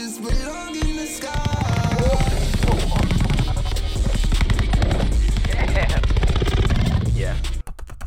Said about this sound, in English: Something satisfying about when the son becomes superpowered and he gets a ball and he does this like sort of super quick bouncing, where he's dribbling it incredibly quickly. There's something very satisfying about the noise.